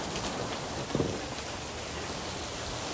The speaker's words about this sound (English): Oh, the rain is coming. We need the rain.